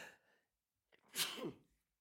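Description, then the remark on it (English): A single loud sneeze bursts out after a quick intake of breath, with a short voiced tail trailing off; no one speaks. “They come in twos.”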